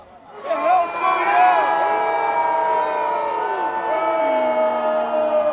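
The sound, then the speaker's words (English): A large crowd at a festival jousting arena lets out a loud, sustained collective groan and jeer, many voices overlapping, swelling quickly and holding for several seconds, as a jouster misses the small hoop. “Sir William did, in fact, miss the small hoop, and our section was not happy.”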